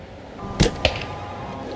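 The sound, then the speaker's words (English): An arrow is loosed from a bow: a sharp, snappy twang followed a moment later by a second crisp thwack, both fairly loud against a quiet background hum, with no talking. “I'm doing pretty good, but my left nipple is getting clipped pretty hard by the arrows fletching, and my arm is getting tired from holding the bow so long.”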